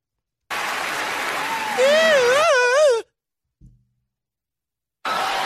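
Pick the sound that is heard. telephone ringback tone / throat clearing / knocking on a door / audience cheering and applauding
audience cheering and applauding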